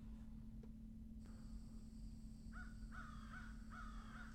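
A crow caws several times in quick succession, harsh repeated calls over a steady low hum and faint high-pitched whine, with no one speaking.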